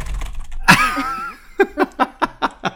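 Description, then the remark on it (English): Quick keyboard typing: a rapid, even run of about six sharp clacks at a steady pace, preceded by a brief, louder burst with a tonal, voice-like quality. “That's still less furious than you were typing earlier.”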